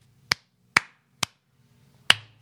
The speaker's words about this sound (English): Oh, we got to clap. But that's just like for camera.